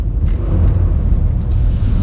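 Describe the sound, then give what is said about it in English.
A deep, steady engine rumble of motorcycles going by, loud and continuous throughout with a gritty low roar and no voices. “And it's funny how, like, uh-oh, we got motorcycles up in this bitch.”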